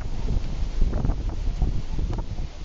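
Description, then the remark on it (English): Strong wind buffets the microphone in a steady low roar on a cold day, with heavy rumbling gusts that swell and fade over a few seconds, loud with no voices. “Okay, it is so windy right now.”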